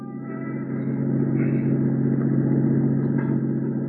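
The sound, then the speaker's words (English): A car drives steadily along streets, cruising an area street by street, its engine giving a continuous low droning hum that swells slightly after the first second and then holds even, with no voices. “So I decided to cruise that area street by street.”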